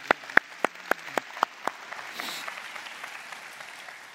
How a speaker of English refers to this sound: So praise the Lord for, we're clapping.